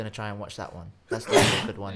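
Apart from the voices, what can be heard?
sneeze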